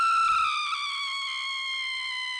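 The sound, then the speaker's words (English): A loud, blood-curdling scream sound effect held as one long, shrill cry with a steady pitch that sags slightly toward the end, with no talking alongside it. “There's a good scream, blood-curdling scream.”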